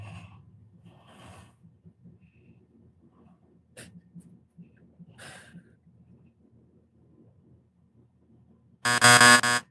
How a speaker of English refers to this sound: Right. I don't want to hear that buzzer while I'm talking.